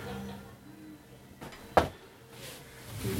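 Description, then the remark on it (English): A heavy bulkhead door on a docking collar slams shut with a single sharp, loud metallic thud, bracketed by brief hissing and mechanical rumble against a low background hum. “The bulkhead on the docking collar is closed.”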